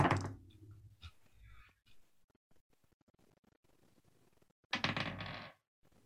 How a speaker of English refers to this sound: So that's five dice. And then another three. And then another three. I got to roll one more die.